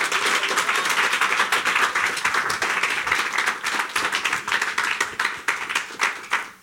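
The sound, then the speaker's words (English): A church audience claps for the Lord Jesus, steadily and loudly for several seconds, a dense wash of many hands with sharp, rapid slaps, sustained without a break and no voices standing out. “Why don't you clap for the Lord Jesus?”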